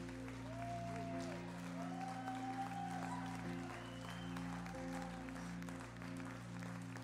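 audience clapping in praise

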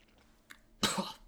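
coughing

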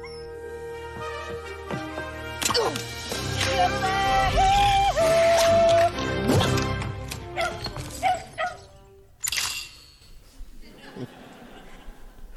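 dog barking

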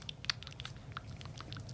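biting and chewing food

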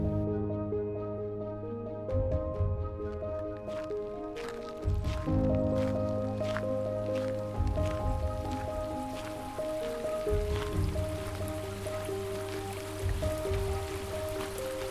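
babbling brook water

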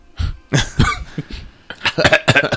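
woman coughing

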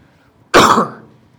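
cough

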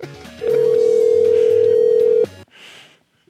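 telephone dial tone

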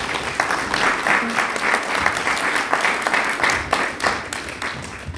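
audience applause

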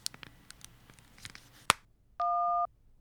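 telephone line tone

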